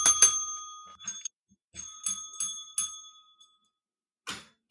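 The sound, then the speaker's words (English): A small, tinny bell rings in several quick bursts, bright and metallic with lingering high tones, then pauses before one last short ring near the end. “There's your bell. Bell!”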